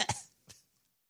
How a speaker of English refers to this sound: Hold on. Sorry. One second. You shouldn't cough into the microphone.